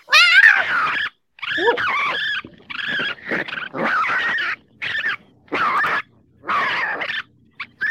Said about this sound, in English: That's a fox. Mm-hmm. That's a red fox. It's high pitched.